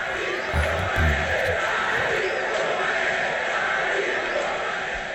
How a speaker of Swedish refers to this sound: Publiken börjar smyga igång ett Ali Boumadje, Ali Boumadje.